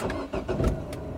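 A car engine cranks and catches, a low rumbling motor with a few sharp bursts over about a second, heard on its own with no one speaking.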